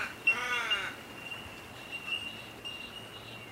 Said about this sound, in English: It sounds like lots of little bells chiming together. This nature noise is coming from a type of bird called a bell bird. It's a good name, isn't it? And it sounds like there's a whole group of them living together in this area. It's called a colony.